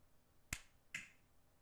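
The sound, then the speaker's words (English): Two sharp finger snaps, roughly half a second apart, each a crisp bright click with a brief ringing tail, over quiet background with no talking. “Oh, you messed up on that snap.”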